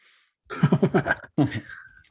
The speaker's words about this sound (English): He coughed. Turn your head to the right next time, though.